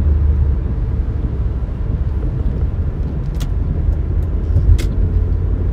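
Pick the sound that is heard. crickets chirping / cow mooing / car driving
car driving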